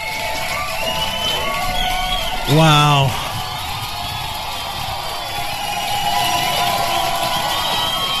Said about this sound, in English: Oh, no, hold your applause, please. No, please.